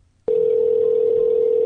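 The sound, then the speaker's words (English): After a brief moment of quiet, a loud, steady telephone ringing tone starts abruptly and holds unbroken, with faint music just audible beneath it. “Okay, so in the ringing that I recorded it from my own show, apparently, because if you listen really closely, you can hear music in the background of the ringing.”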